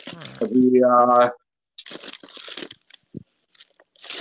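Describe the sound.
A voice sounds briefly, then comes a run of crisp, crackly crunches in short uneven bursts as someone eats, chewing something crunchy, trailing off into a few scattered crunches.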